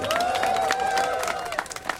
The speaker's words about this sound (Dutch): Heel erg bedankt. Hartstikke bedankt. Geef iedereen nog een heel erg groot applaus.